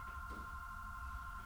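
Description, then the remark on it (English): A telephone rings with a steady, high electronic tone that holds unbroken for the whole moment, clear over a low background hum, with no one speaking. “Answer the phone.”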